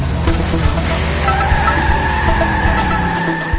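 A car engine roars loudly as the vehicle pulls away, its tires letting out a sustained high-pitched squeal that holds steady over the rumbling motor for several seconds.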